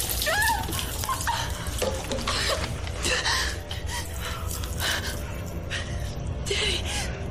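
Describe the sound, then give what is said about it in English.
Water drips and splatters steadily, a dense, busy patter of small impacts over a constant wet hiss, with a brief high vocal sound near the start. “Lots of dripping.”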